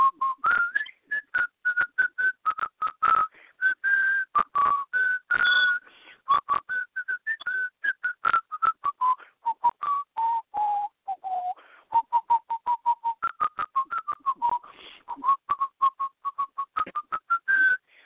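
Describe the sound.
Someone whistles a bright, continuous melody of a song written by a nun, the pitch stepping up and down through the tune for nearly twenty seconds with short breaths between phrases and no talking.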